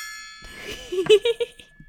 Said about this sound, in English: Give yourself a little ding on your gong.